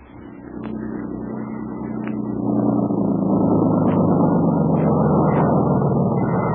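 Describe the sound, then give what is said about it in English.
A motorboat engine drones steadily, its low hum building in loudness over the first few seconds and then holding at a strong, continuous roar, with a few faint clicks on top. “we see a couple of natives busily transforming it from a crude boat into a smooth, sleek motorboat. Soon, the motor's on.”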